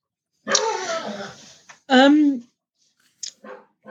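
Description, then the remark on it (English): A dog whimpers and yips: two drawn-out, wavering whiny cries, then a few short, quieter yelps trailing off after a pause. “Sorry, your dog's got plenty to say on that.”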